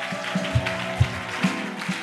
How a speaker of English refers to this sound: Clap your hands and give the Lord a shout.